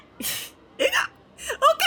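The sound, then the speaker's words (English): A voice imitates hiccups, making three short, sharp vocal hics spaced irregularly, fairly loud with quiet gaps between them. “Okay, he wanders off, hiccuping and like jumping in time cartoonishly with each of his hiccup.”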